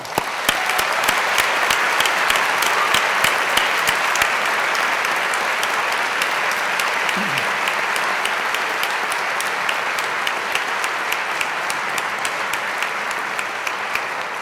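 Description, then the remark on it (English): A large audience at a graduation ceremony applauds the graduates steadily, a dense wash of many hands clapping at an even, sustained loudness for the whole stretch, with no voices standing out. “So let's give them a well-deserved round of applause.”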